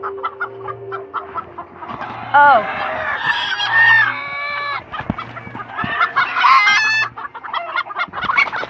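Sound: chickens clucking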